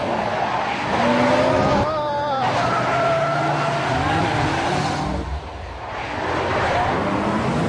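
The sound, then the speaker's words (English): A powerful car's engine revs hard as it speeds up, with tires squealing and skidding in long wavering screeches, loud throughout, with a brief faint voice under the noise. “You are liable for any damages to the vehicle, so please stop the car and slow down.”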